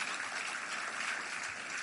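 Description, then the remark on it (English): An audience in a church auditorium claps together in a steady, dense wash of applause that holds at an even level for about two seconds, with no voices rising above it, applauding the people who cleaned and prepared the auditorium. “Let's clap for those people. Let's put hands together for them.”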